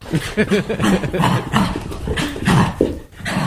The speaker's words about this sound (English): Wow, her bark has changed.